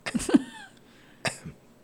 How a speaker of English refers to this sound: What is with this coughing?